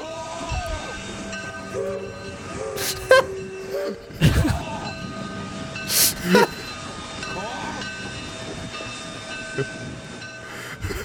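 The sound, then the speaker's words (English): A train sound effect: a steady rolling rumble with sustained whistle-like tones, broken by several sharp bursts of hissing steam, moderately loud throughout. “I think we're all aboard the Carl Jung train.”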